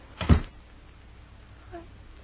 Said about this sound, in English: Close that door, Lucy. You'll catch your death of cold.